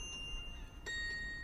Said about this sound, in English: Church bells chime through cobblestone squares.